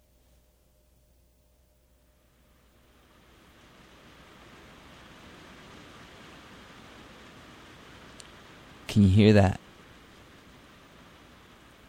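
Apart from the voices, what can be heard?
heavy rain falling outside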